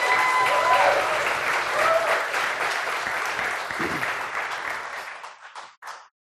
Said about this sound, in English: What a blessing to be part of Baptism Sunday, amen. Can we give another round of applause to everyone who got baptized today?